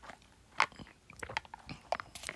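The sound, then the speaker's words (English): Someone drinking water: a string of short, wet mouth clicks and soft gulps at an uneven pace, fairly quiet, with no talking. “Sorry, I'm drinking my water too.”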